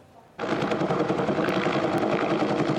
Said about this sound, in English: Smoke fills the sky as a chopper tries dousing the flames of the Cowichan River wildfire. It's grown to 4 hectares and is classified as out of control.